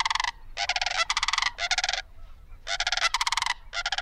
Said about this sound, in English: Sandhill cranes are often heard before they're seen. Their loud, rolling trumpets fill the air, even for a couple of miles. Males and females call in unison as a loud duet that helps reinforce their pair bond.